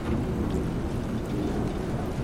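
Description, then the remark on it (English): Steady, heavy rain pours down continuously, with a deep low rumble underneath like thunder. The downpour is dense and even throughout, with no voices. “Now, suddenly, this rain.”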